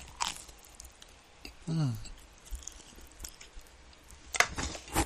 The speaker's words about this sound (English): Did you hear that crunch?